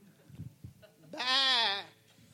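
A single loud, wavering sheep bleat rises out of quiet background rustling, holding for almost a second before fading out.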